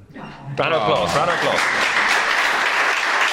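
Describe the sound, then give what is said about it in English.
A crowd bursts into loud, sustained applause, a dense wash of many hands clapping together, with a few voices briefly audible at the start before the clapping swells and holds steady. “Round of applause.”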